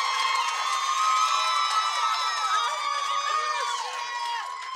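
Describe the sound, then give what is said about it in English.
A crowd cheers and hoots continuously, many overlapping high voices whooping together in a dense, steady roar that eases slightly toward the end, with somebody hooting from the side. “Somebody was hooting from the side.”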